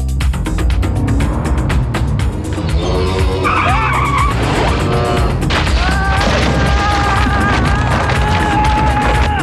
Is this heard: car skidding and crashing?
yes